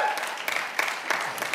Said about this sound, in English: Yeah, give God a good clap offering if you believe that.